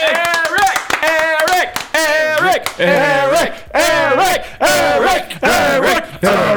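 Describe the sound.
A loud round of applause for a new producer joining the staff, with steady rapid hand clapping buried under boisterous whooping and cheering voices that rise and fall in pitch for several seconds.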